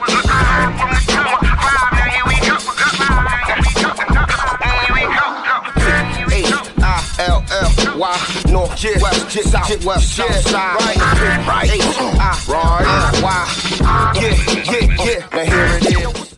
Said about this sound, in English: Drums, please.